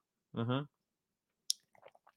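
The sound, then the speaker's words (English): A quick voiced murmur, then a sharp click and a few soft, wet mouth sounds as someone takes a small sip of coffee in the morning. “I need to get a little coffee sip in.”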